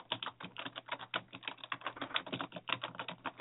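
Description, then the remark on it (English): Rapid, dense clatter of keys on a computer keyboard, a fast irregular stream of clicks that keeps up without pause, moderately loud, with no voices. “Furious typing.”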